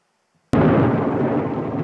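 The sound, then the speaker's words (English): A sudden, loud crash of thunder in a thunderstorm breaks a near-silence, then rolls on as a deep, sustained rumble that stays loud to the end, with no voices. “Maria's first night at the Von Trapp family, and the children all run into her room because of a thunderstorm.”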